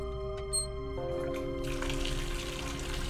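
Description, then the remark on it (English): Water starts running from a tap about halfway through, a steady hissing rush that continues to the end over a low, sustained musical drone. No one speaks. “You start to hear water running.”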